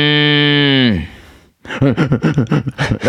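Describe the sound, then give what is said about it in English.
A person imitates a Moo Box cow toy, voicing a single drawn-out, buzzy moo that holds a steady pitch before it sags downward and fades, followed by someone talking quickly. “It was a box that went Moo.”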